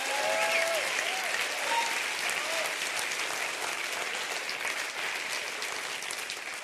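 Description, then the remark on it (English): An audience, told to clap their hands real big, claps steadily, the dense applause holding at an even level before easing slightly toward the end, with a few faint voices calling out beneath it. “Anybody want to hear what God says about you tonight? Clap your hands real big.”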